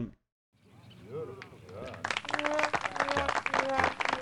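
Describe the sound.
A muffled voice hums briefly, then steady, light golf clapping, polite clapping in response to a bear-in-a-bar dad joke, starts and keeps going for a couple of seconds, with voices and a bit of laughter running underneath.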